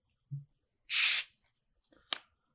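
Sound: drink being poured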